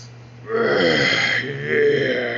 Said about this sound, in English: I'm about to freaking farted. My bad. Farted in the restaurant.